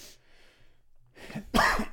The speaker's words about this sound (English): I'm sorry, folks. I can't kick this cough. Can't stop coughing. So that was annoying. That was frustrating.